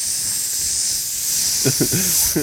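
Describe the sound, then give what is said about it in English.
A person makes a sustained, loud hiss imitating a snake as a goodbye while slipping away, a steady breathy rush lasting the whole moment, with a few voiced murmurs or laughs breaking in near the end. “You just hissed like a snake on your fucking for your goodbye, like snaking away.”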